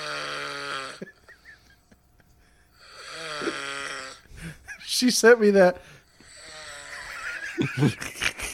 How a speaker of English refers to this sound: Are you snoring or ripping ass? No. No. That's me snoring. I should probably get it checked out, right?